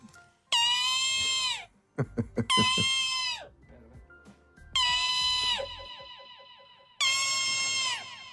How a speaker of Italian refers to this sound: La marmotta fa un verso strano, la marmotta. Lo sai come fa? No. Te lo giuro. Allora, marmotta. Fischia. Così.